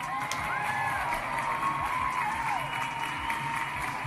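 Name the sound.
audience applause and cheering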